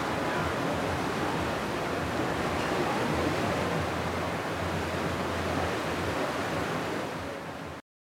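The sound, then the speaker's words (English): A steady, dense roar of ocean waves washing continuously, heard from a ship's deck, loud, with no distinct breaks between swells and no voices, ending abruptly. “You're on the edge of the edge. You're always looking at the ocean.”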